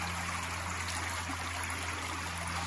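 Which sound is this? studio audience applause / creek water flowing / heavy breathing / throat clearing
creek water flowing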